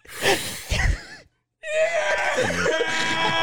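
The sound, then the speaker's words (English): Rubber chickens, squeezed by several people, squeak and squawk in loud, shrill, wavering bursts. A short raspy squawk comes first, then a brief pause, then several squeals overlap in a sustained chorus to the end. “Everyone pull out your rubber chickens and make the sound.”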